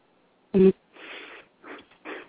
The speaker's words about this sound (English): No, I just had to clear my throat.